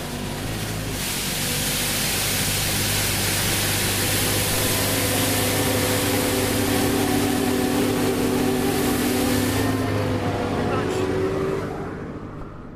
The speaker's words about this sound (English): Ideas? Well, that was a motorised road sweeper.